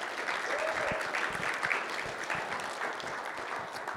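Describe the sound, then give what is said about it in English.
A crowd applauds the PCA community steadily for several seconds on the last day of an event, a dense, even wash of many hands clapping at constant loudness with no speech on top. “Can we have a round of applause for the PCA community?”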